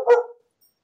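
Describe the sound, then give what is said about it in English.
A single short, sharp dog bark rings out, then cuts off into silence. No one speaks. “The dog was done, too.”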